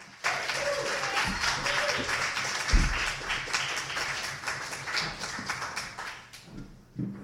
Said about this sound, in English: Don't you hate it when I do that? Give this man a big round of applause. He makes this thing happen.